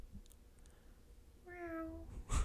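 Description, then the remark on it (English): A person lets out a single drawn-out imitation of a cat's meow, clear, sliding slightly downward, followed by a brief loud rustle or thump at the end. “Meow. Meow. Speaking of meows”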